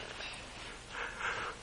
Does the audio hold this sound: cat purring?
no